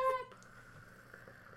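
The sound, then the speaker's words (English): A person imitates a cat purring: a brief voiced tone at the start, then a soft, steady, breathy rumble held for over a second, quiet and close. “But you know what noise they do make? Do they purr? They do purr.”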